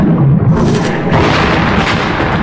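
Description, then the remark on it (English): A dense, roaring barrage of explosions as 30 laser flashes from Vespa-class fighters hit the shattered hull of Harlequin's cave hog spaceship. Deep rumbling booms continue with a fresh burst about midway, loud and continuous, with no talking. “Once again, 30 brilliant flashes of light streaked through the darkness and exploded into the shattered hull of Harlequin's cave hog.”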